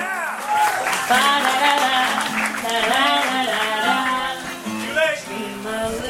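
A crowd of wedding guests at the ceremony cheers loudly and steadily as a man makes his entrance, with overlapping whoops and shouts riding over a continuous wash of applause for about six seconds.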